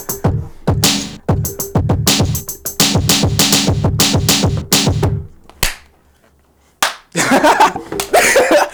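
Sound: hand claps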